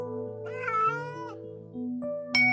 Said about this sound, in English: Kitten talk. Sounds.